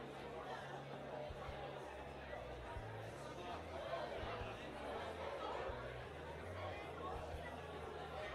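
A huge, near-capacity crowd at the Gabba cricket ground during a New Zealand cricket match fills the air with a steady, dense roar of chatter and cheering, with scattered laughter and a low rhythmic drumming pulsing underneath throughout.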